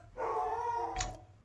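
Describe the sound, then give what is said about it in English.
A dog gives a single drawn-out, whining bark that lasts about a second, fairly loud, ending with a short sharp burst; nobody speaks over it. “Your dog's like, what?”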